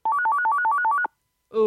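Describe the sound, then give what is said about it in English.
A phone ringtone trills in a fast, repeating two-note electronic pattern for about a second, then stops abruptly as a voice begins to speak. “Okay, the weird Earth children's phone is ringing.”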